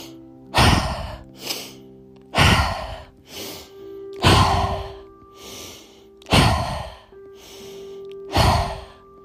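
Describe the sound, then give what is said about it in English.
A breath-work cycle of intentional breaths, each quick drawn-in inhale through the nose followed by a loud, forceful whooshing exhale through the mouth, repeating about every two seconds with a soft tonal drone underneath and no talking. “An intentional inhale and forceful exhale.”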